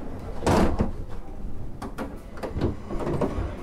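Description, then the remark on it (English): Heavy train carriage doors slam shut one after another as passengers board a steam train at Paddington Station before departure: a loud bang near the start, then several more thuds and clunks at irregular intervals, some fainter. “It's only about a minute or so, yeah, if you'd like to get in and shut the doors, yeah?”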